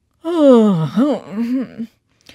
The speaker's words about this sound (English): King Nebuchadnezzar turned over restlessly in his bed and yawned loudly.